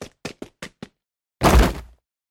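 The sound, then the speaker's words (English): Five quick, sharp footfalls in a rushed rhythm as a person runs blindly through an unknown, dark space, then a pause and a heavy thud with a brief scraping rumble as they trip over an object and crash onto the floor, scraping their palms. “I am lucky the fall did no worse than knock the wind from my lungs and scrape my palms raw.”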